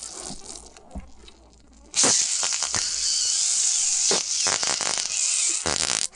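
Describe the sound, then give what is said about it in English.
A campfire log crackles with scattered sharp pops, then a loud, steady hiss of steam, escaping from moisture trapped in a knot in the log, surges in and continues to the end, with more snaps breaking through it. No one speaks. “Oh, that's really crackling. That one. That one knot has got some steam.”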